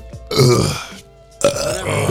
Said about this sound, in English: Ooh, that was a good burp.